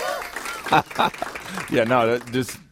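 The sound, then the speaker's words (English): A loud burst of crowd applause with cheering mixed in, and a sustained wavering whoop rising over the clapping near the end before it cuts off abruptly. “We don't need the crowd noise.”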